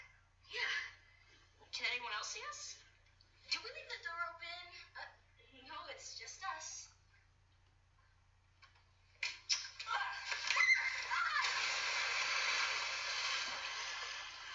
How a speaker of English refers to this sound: they fall into some water, because, ah, they scream